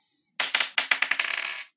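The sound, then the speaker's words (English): Dice clatter across a hard tabletop, a burst of sharp clicks that bounce, speed up and rattle to a stop within about a second and a half, rolled for an investigation check in a game. “Oh, she's going to use, can she roll for investigation? Sure. Damn it, I didn't think I need my dice.”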